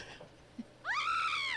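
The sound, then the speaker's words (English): A woman in the studio lets out one loud, high-pitched scream that rises sharply, holds steady for under a second, then drops away. Only a few faint noises come before it, and no one is talking. “They can't hear, when you're in space, they can't hear you scream.”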